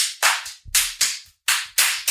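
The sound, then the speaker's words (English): A quick series of about seven sharp slaps in a loose rhythm, each a crisp smack with a brief trailing hiss, with no talking in between: slaps to the top of a person's head during an Indian head massage. “They literally slap the shit out of the upside of your head and it's supposed to be relaxing.”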